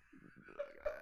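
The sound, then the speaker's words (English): A single quick, fairly soft sneeze, with a voiced, throaty catch running through its brief second-long burst. No talking alongside it. “Bless you.”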